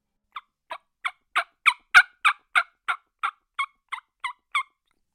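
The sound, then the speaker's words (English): A diaphragm reed mouth call imitates a hen turkey: about a dozen evenly spaced raspy yelps, swelling louder midway then easing off, clear with no talking. “my reeds are all stuck together, and it's not giving me the rasp that I want.”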